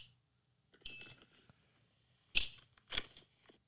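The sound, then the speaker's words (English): Small magnetic metal rings clink together in a few bright, sharp bursts, each one a quick jangle with a short metallic ring, with silence in between. “Magnetic that is in a dungeon that you might use? Ooh, cock ring. Yeah, like the cock rings that”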